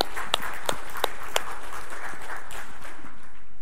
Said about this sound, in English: Yeah, it's a great place for a hand clap.